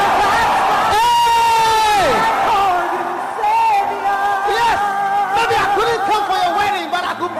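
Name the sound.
audience shouting and clapping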